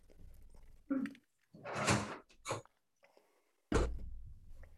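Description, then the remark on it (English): A door is opened and shut: a brief knock, a longer rushing slide or creak, a quick rattle, then a loud, sharp thud as it closes, with quiet pauses between. “And I got to get the door real oh, quick.”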